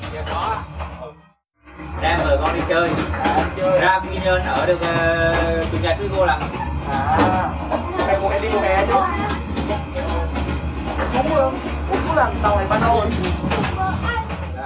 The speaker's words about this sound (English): leaving the Saigon train station, heading north towards Binh Hoa, I walked across the train cabins and met a train attendant's family in one of the connection cars to join the two halves of the train together.